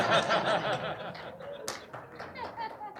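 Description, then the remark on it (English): An audience breaks into scattered clapping mixed with chuckles and laughter, a dense patter of claps that thins out over a few seconds. “love the clapping, yes.”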